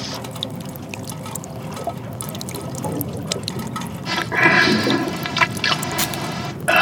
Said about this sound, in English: The water's up to my waist now.